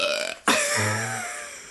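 A loud burp erupts suddenly after a brief pause, followed by a low, guttural tail that fades over about a second. No speech accompanies it.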